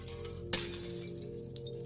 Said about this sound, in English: And as you sit in darkness, in silence, slipping into this void, suddenly you hear glass shattering all around you.